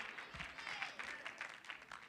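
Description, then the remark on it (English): A church audience claps its hands to thank God for the healing of the pastor's wife, in a dense, steady burst of overlapping claps that holds at a fairly even loudness throughout, with no clear talking over it. “Would you clap your hands and thank God for his healing virtue in your pastor's wife?”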